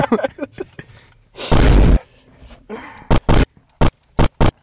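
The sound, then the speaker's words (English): Explosion sound effects: a voice briefly at the start, then one loud, rumbling blast and, after a pause, a quick series of five short, sharp bursts, all punchy. “This Those hit, explosion sounds?”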